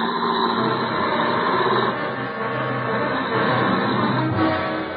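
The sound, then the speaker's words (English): A police squad car's engine rumbles steadily as the car drives off toward Grand Central, a continuous, fairly loud mechanical drone with a busy noisy texture and no voices over it. “Get the squad car moving”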